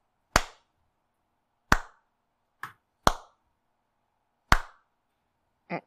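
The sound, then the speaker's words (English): Six sharp hand claps at uneven intervals, each crisp with a quick decay, separated by silence; the last clap is softer and duller than the rest. No one speaks. “I'll mimic the clap back.”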